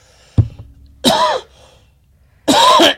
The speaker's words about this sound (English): Sorry about that. I was trying not to cough in the mic and I, bam, hit it. Covering my mouth.